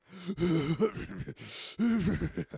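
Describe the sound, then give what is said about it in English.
A man's voice imitates the heavy, labored breathing of a sick man: a few strained, groaning gasps and a long rasping breath, fairly loud, with no words spoken. “There came a long silence, broken only by the heavy breathings and gaspings of the sick man.”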